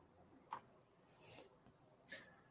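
Quiet snips of scissors trimming hair: two short crisp clicks about a second and a half apart, with a soft brushing rustle between them and no talking.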